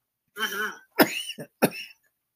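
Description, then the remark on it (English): After someone swallows something the wrong way, a gravelly, voiced throat-clearing rasp is followed by three sharp, harsh coughs in an uneven sequence, the last two close together, with no talking. “No, I swallowed something funny back in my throat.”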